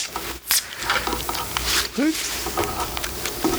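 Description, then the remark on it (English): A can of Los Angeles Ale Works Lunar Kitten West Coast IPA (7.5%) snaps open with a sharp crack, then a steady fizzing hiss carries on underneath, joined by a few brief murmured vocal sounds. “All right, let's give it a crack.”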